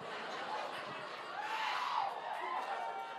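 An audience cheers and laughs in a steady, dense roar lasting about three seconds, with a rising whoop standing out in the middle before the noise settles slightly.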